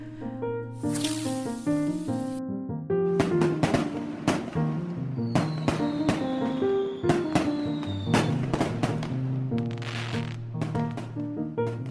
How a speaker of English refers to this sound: My sister, Anna, was born on the 4th of July. My parents used to tell her that the fireworks on Independence Day were all meant for her. What I didn't realize was that my parents could hear the fireworks outside when they first held my sister.